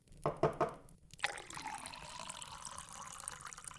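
A few quick clinks of glass, then rum pours steadily into a glass for several seconds, fairly quiet, with no voices.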